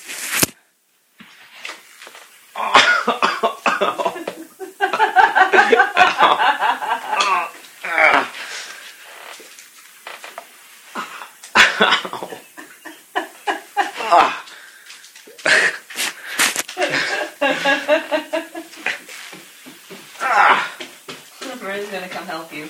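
A person on the floor strains and groans while foam rolling their shins, with breathy wheezes, pained grunts and sharp exhales coming in uneven bursts.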